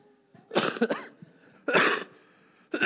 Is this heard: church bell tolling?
no